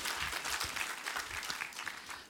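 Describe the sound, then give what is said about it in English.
A seated church audience applauds the Lord together, a dense, steady wash of many hands clapping that stays loud and even for a couple of seconds before easing slightly at the end. “Would you applaud the Lord while you're seated?”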